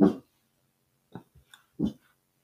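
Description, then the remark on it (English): A dog gives a few short, soft barks spaced unevenly over a couple of seconds, with brief quiet gaps between them and no one talking. “You know, I'm really not sure what happened with this barking, but go ahead, sweetie.”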